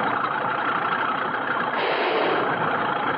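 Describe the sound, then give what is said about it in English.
A heavy Caterpillar bulldozer engine, used to clear land, idles in a steady, unbroken rumble, a dense mechanical drone that holds the same loudness for about three seconds with no voices over it. “Move the cat forward,”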